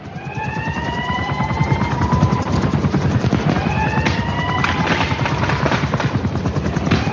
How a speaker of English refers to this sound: Sirens. Gunshots.